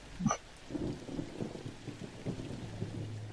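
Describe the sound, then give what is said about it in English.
Thunder rolls in a low, continuous rumble that swells and fades over a few seconds, preceded by a brief high-pitched chirp at the very start. No voices. “You can still hear thunder, but there's no rain.”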